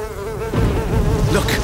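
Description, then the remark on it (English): A loud insect buzz drones steadily, growing fuller and more intense halfway through as the wings seem to beat harder. No voices. “Buzz like you've never buzzed before.”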